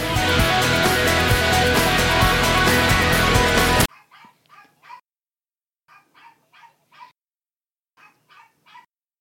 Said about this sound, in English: Oh, time out. What? Is that a dog? Okay, can you hear my dog?